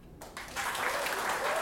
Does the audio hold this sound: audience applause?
yes